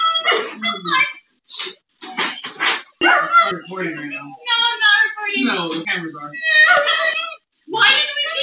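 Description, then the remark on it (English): Several dogs in crates bark and yip in quick, overlapping bursts, loud, with high whining cries mixed in and only brief pauses in the commotion, recorded by a security camera. “So here's the security camera footage of the incident.”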